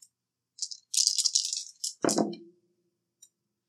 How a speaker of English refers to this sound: Let's roll our 5d6. See what we find on day 8.